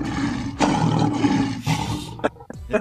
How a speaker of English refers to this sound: Oh, man. No. That's the lion right there, man. Ooh. That lion, he bust through that wall. You know that's the lion.